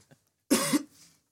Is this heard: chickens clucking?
no